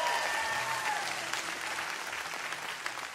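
An audience claps together in a dense, steady burst of applause that holds at an even, fairly loud level for about three seconds, many hands blending into a continuous crackling wash.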